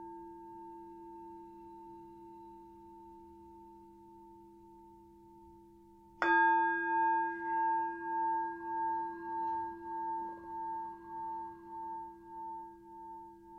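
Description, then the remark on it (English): A meditation bell, one of three sounds rung to open a guided meditation, is struck once after a few seconds of low steady hum, then rings on with a bright, shimmering tone that pulses and wavers as it slowly fades. “I'll start with three sounds of the bell and the usual settling in introduction.”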